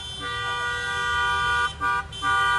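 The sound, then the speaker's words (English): Car horns blare in a steady, overlapping chorus at a rally in Holland, briefly cutting out twice near the end before resuming, with a low rumble of traffic underneath and no talking. “Okay, but I'm not listening to them honking horns the whole time.”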